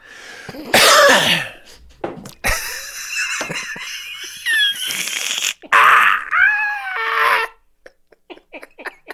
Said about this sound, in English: sometimes, you know, something will go in the wrong way or something will get stuck somewhere or you just got to cough. And every time I cough, I'm like, uh-oh.